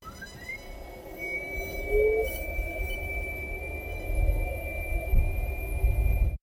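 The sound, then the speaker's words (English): A Nissan Leaf electric car's synthetic forward warning sound: a thin electronic tone sweeps upward, then holds one steady high pitch over a low rumbling hum, with no speech. “Nissan decided to give the backup sound on the Leaf a different sound, which is interesting.”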